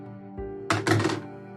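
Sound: dice rolled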